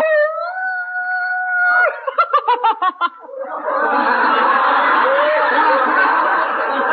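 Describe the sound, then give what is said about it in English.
A man imitates a wolf howl in a comedy sketch with a sustained, steady, fairly high-pitched tone for about two seconds, followed by short choppy bursts of laughter and then a long wash of crowd laughter. “There's something over there. Look, it's a wolf.”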